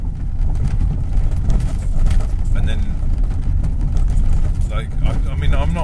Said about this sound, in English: So me talking about nonsense whilst driving along noisy roads, maybe the white noise of the road and the bumps and the crunches is just all enough to take your mind off of whatever it is you're thinking about, so that you can drop off to sleep.